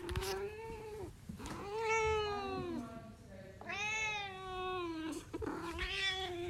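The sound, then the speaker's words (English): A pet cat named Margot meows repeatedly, letting out about four long, drawn-out, whiny calls that rise and fall in pitch, with brief pauses between them and no talking. “Have you recorded Margot meowing?”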